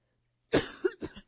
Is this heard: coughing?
yes